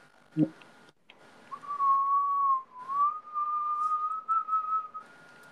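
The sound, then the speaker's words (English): A person whistles a sustained, wavering tone for several seconds, fairly loud, after a brief thump at the start. “Bro, your stuff just like whistled.”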